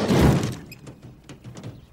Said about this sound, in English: That also, like, that scene directly leads to the gas scene when Tommy gets the gas and breaks the door and he's fixing it. And then Richard touches it and the door falls.